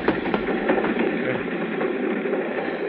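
A moving train rattles and clatters along the rails in a steady, dense rumble, with faint rhythmic clacks running through the continuous noise; no voices are heard.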